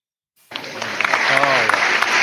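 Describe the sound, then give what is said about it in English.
A crowd bursts into loud, dense applause for the South Carolina Supreme Court reproductive freedom ruling, starting abruptly and holding steady, with voices cheering and whooping through the clapping. “That applause went on a lot longer than I thought it would.”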